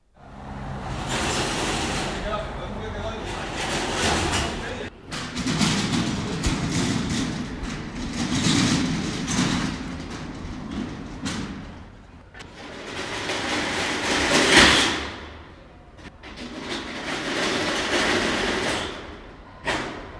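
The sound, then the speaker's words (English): Metal shutters of about three to five antique shops rattle and clatter down one after another at lunchtime, a series of loud, rumbling metallic rolls with brief pauses between them, heard outdoors from a balcony above the shops. “The chorus of metal shutters being slammed down.”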